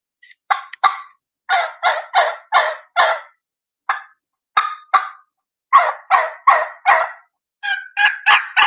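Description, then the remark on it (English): A turkey call is used to make a run of deep, raspy, honky jake yelps in choppy groups with a slower rhythm, mixed with a few short deep clucks, loud, with brief pauses between series and no talking. “So I'll throw some Jake yelps out there, some deep clucks with it.”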